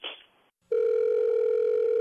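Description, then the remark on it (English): A brief click and rustle, then a steady, loud electronic phone tone hums continuously, the ringing heard on the line while calling a woman back, with no voices. “So let's have you call her back, and she'll probably call you out on it, okay?”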